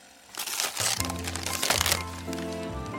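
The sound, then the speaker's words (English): Newspaper wrapping on a gift is torn open to reveal a stapler, a sustained burst of loud crackling and crinkling rips with a low background hum underneath, and no one speaks. “Alright, the next one is wrapped in newspaper.”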